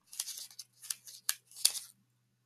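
paper rustling

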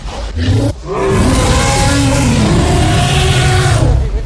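car engine revving

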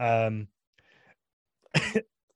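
coughing

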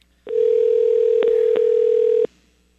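telephone dial tone

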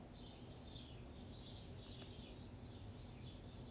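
wild birds singing

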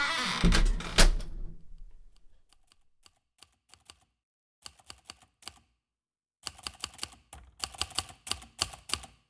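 typewriter keys typing

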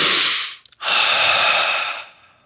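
deep breathing

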